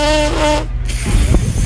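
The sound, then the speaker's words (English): A free lip buzz done as a buzz test of how drunk the players are: a short, steady buzz with a rich, reedy harmonic tone lasts about half a second, breaks off, then gives way to sputtering, breathy buzzing and low rumbling noise. “Let's do the buzz test.”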